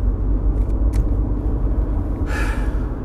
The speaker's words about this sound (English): Sorry, fighting through traffic. Trying to get to the gym because I'm fucking late.